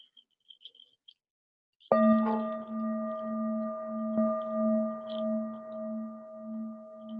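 After a brief hush with faint high chirps, a singing bowl is struck once during a guided breathing and relaxation exercise and rings on in a steady, layered tone that gently pulses and wavers as it sustains to the end.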